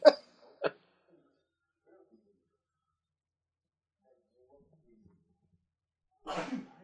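sneeze

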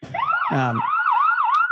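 ambulance siren sound effect

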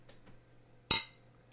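beer glasses clinking

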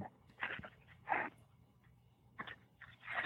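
dog whimpering and panting

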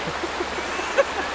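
river water flowing

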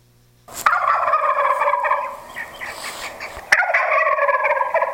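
wild turkey gobbling

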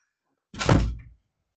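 door slamming shut

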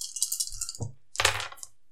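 three dice being rolled

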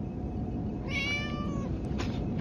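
cat meowing

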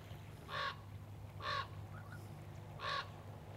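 raven cawing

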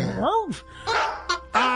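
dog barking

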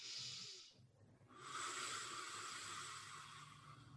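slow deep breathing

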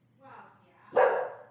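dogs barking

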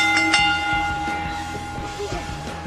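bell ringing

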